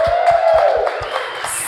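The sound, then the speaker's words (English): An audience at New Church Live applauding loudly for everyone who contributed to reaching the fiscal year-end stewardship goal, with a steady rhythmic thump running beneath dense clapping and a sustained whistle-like whoop rising over the crowd noise. “Yes, I just want to give a big round of applause to everybody at home, in person, who made a contribution to New Church Live.”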